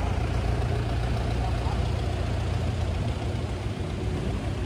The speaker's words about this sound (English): Hold on, you guys. There's a car driving, tractor going by.